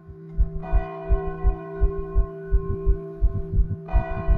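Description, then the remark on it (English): Church bells ring out in the morning for a mass, with long, humming overtones, one fresh strike landing early and another near the end, while a steady low thudding pulse beats underneath. No one speaks. “And in the morning, if I didn't hear the gunshots at night, I would hear the bells ring.”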